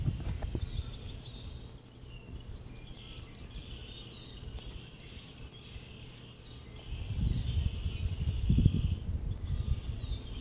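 Quiet snowy morning ambience outdoors at about 7 a.m. after a huge snowstorm, with soft snow outside: a soft, steady low hush with faint scattered bird chirps, and a deeper rumble of a garbage truck backing up swelling over the last few seconds. No one speaks.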